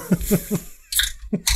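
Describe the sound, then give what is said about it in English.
A few rhythmic gulps of beer being swallowed, broken by short bright hissing bursts of a beer can being cracked open, with no talking. “No, I'm just like, wait till I swallow my beer before you say that.”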